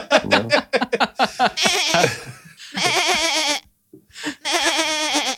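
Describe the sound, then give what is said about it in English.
A goat bleats loudly, opening with a quick stuttering burst, then three long wavering bleats with short pauses between them. No one speaks. “I swapped them for a goat and some magic beans.”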